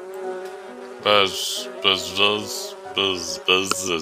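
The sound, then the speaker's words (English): A voice imitates a bee's buzz in several loud bursts, droning and nasal with hissy edges, pausing briefly between each buzz. “Oh, speaking of bees. Buzz. It's our friendly neighborhood bee”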